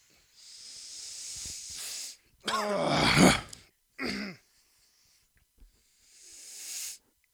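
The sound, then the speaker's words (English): A person snorts a line up the nose: a long, hissing snort, followed by a strained groan and a short grunt, then another sharp nasal sniff. Fairly loud, with no words spoken. “So, without further ado, let's rip some fucking nose beers here and get into today's episode.”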